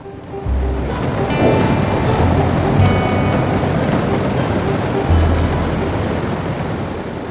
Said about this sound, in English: all of a sudden, the wave's lip begins to throw itself over my head. I'm enveloped in crystal white blue water.